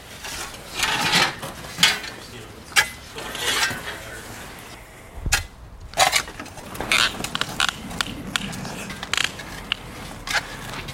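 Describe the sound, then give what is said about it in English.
A shovel creaks and scrapes while digging, with irregular bursts of grinding, crunching noise every second or so and brief quiet gaps. No one speaks. “The shovel is annoyingly loud.”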